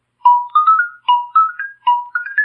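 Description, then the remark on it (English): A xylophone is played at home, a short, bright tune alone: three quick phrases of rising struck notes, each starting low and climbing, played clearly with no voices. “I couldn't wait to get home and get out the xylophone.”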